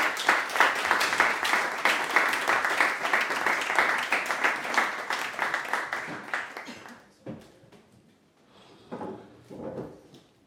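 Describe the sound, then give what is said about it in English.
Audience applause for a filmmaker and two stars of his film as the three are invited up: dense, steady clapping from many hands for about seven seconds, then it dies away into a few scattered, fainter sounds and shuffling. “and a big round of applause for the three of them coming up.”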